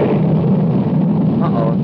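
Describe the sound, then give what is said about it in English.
Jura's spaceship blasts off with a loud, steady roaring rumble that fills the whole clip, deep and continuous with no breaks. “It's Jura's ship. He's getting away.”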